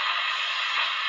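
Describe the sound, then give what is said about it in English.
A steady looped wash of radio static, a constant hissing crackle that holds at an even, fairly loud level throughout with no voices over it. “do you have any radio static to play underneath the conversation?”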